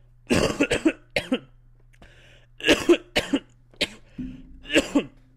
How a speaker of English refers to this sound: Yeah, you hear that? That's that COVID cough.